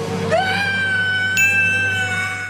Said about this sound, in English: … reacts the only way a sane person would, with the world's biggest scream take